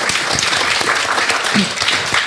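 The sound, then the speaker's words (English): Steady audience applause for the panellists at a talk, many hands clapping in a dense, crackling wash that stays loud and even throughout, with no voices rising above it. “And let's give our panellists a round of applause as well.”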